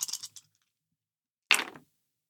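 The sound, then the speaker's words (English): Dice rolled for movement in a game clatter briefly across a hard surface, a light rattle followed a second later by a louder, sharper tumble. Clear, with no voices. “Everybody roll for move.”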